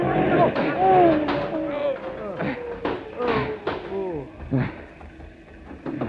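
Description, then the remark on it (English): A bus is deliberately yanked into a ditch, lurching and crashing with a rough rumble and a string of heavy thuds and clattering impacts, loud, while voices shout over the commotion. “That bus was pulled into the ditch on purpose, sir.”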